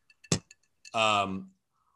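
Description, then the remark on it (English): Glasses clink together in a toast to Norm, several quick bright taps with one louder knock, followed by a brief drawn-out voiced exclamation. “Here's the Norm. Cheers.”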